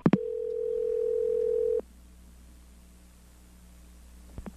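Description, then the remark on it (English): A telephone dial tone, heard as a prank call is placed, hums steadily for under two seconds after a sharp click, then cuts off, leaving faint line hiss until another click at the end. No one speaks. “Let's hear our Texas phone prankster.”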